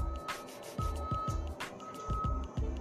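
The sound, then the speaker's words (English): A heavy garbage truck backing up rumbles with repeated low engine surges and hissing air bursts, while a steady high warning beep sounds in two long stretches over the noise. “Just backing up trash trucks while I'm shooting episodes, like making all this fucking noise, right?”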